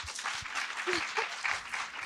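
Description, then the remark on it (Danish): A crowd of people in a hall applauds when asked to clap if they can stay for two more questions, a dense wash of many hands clapping at once, steady and fairly loud throughout with a few faint voices mixed in. “Klap, hvis I kan holde til to.”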